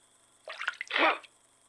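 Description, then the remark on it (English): A short splash of water being poured to clean out a bleeding wound, a quick sloshing burst lasting under a second, fairly loud against an otherwise quiet background. “Here, I've got water to clean it out.”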